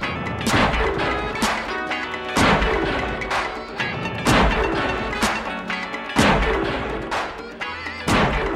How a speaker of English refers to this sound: The little ending that was put together of like these explosion drum sounds